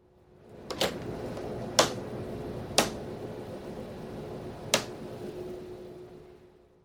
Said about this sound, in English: So the mask is actually clipped onto the treatment couch, and it sounds a bit like Lego bricks clicking together.